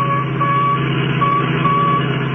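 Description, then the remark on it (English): A steady, repeating electronic beep tone, the tracking signal from the radio in a stolen Royal Coupe, pulses over the constant rumble of a moving vehicle's engine, holding at a fairly even loudness throughout. “That's the signal from the radio in the Royal Coupe that they got away with.”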